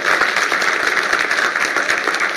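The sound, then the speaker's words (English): An audience at a church service claps hands steadily and loudly, giving the Lord a hand of praise: a dense wash of many overlapping claps with no pause, filling the whole moment like a burst of audienceal applause. “If you're going to clap, give the Lord a great big hand of praise.”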